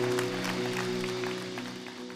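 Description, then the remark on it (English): An audience claps their hands for God's word in a steady, dense patter of many overlapping claps, with a sustained low musical tone holding underneath throughout. “Can we clap our hands for God's word today?”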